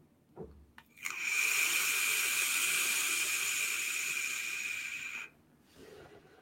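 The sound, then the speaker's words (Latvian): A steady, fairly loud hiss from a vape device set to 45 watts with a 0.3-ohm coil during one long draw, lasting about four seconds with a faint whistling edge, then cutting off abruptly. No one speaks. “Nu, uz 45 vatiem, tad man vismaz nav tā, uz pašām beigām, ka es velku to tvaik, tā nav tas sausums bišķi, tā, ka degums neparādās, kā bija uz 50 vatiem.”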